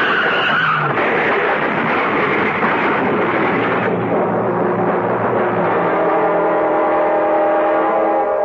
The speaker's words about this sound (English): On an icy road in midsummer, two cars slide into each other, something that usually happens only in midwinter.